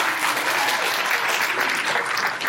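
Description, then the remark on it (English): A church audience claps steadily, giving a round of applause to Him (God) for the resurrection. The applause is a dense, even wash of many hands with no pauses and no voices standing out, holding at a fairly loud level throughout. “Don't give him a round of applause.”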